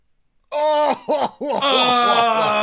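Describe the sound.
A person loudly imitates wet, gagging coughs of a character coughing up water again: a sustained retching groan, then several quick voiced hacks, strained, with no other talking.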